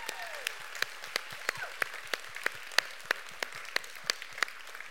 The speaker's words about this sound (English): We think they are the best. So let's clap for Jason and Robin.